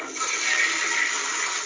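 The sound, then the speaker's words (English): A toilet flushes in one steady, rushing whoosh of water that fills the short moment at a fairly loud level and stays even throughout. No one speaks over it. “Well, yeah, the flush, you know, is for dramatic effect because he would not have known a flushing toilet.”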